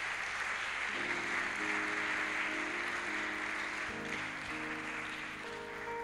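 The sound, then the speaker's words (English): An audience claps for Jesus together in a dense, steady wash of hand claps lasting the whole six seconds, with sustained musical tones rising underneath after the first second. “Oh, we should clap for Jesus.”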